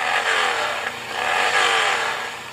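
A motorcycle engine revs loudly as bikers roll through, its throttle rising and falling in two strong surges with a gritty, rumbling roar and no voices.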